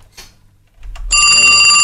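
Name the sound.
telephone ringing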